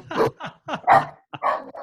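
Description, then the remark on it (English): A rescue dog barks repeatedly in a quick, irregular series of about six sharp, loud barks with brief gaps between them and no talking. “Rescue dog.”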